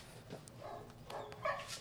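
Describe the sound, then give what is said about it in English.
Several dogs make short, high-pitched vocalizations in quick succession, a mix of yips and whiny whimpers, fairly faint, with no talking. “All the dogs are going crazy.”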